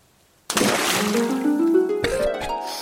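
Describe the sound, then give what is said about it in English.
Liquid pours heavily and steadily into a container, starting abruptly with a rushing splash, its pitch rising as the vessel fills. Fairly loud, with no talking. “Really pouring now.”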